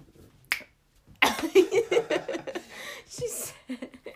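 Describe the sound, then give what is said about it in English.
A woman gives one sharp hand clap, then a burst of giggly, breathy laughter follows for a couple of seconds, with another quick crisp smack near the end. “She all clapped and said, oh, it's a wrap.”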